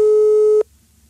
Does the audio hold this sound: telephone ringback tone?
yes